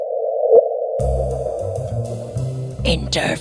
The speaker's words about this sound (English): And that little bloop is actually a gravitational wave hitting the Earth in real time? Exactly. Exactly. Oh. That's how we've heard the universe.